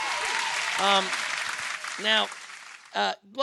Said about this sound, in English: Hold on a second. We got to get the people in here. I got to give you applause for that.